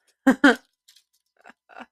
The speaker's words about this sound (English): We're unwrapping the aluminum. Our snack.